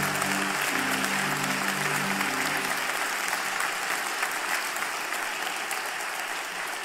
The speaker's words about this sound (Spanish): Aleluya, aleluya. ¿Te atreves a darle un aplauso al Señor? Wow.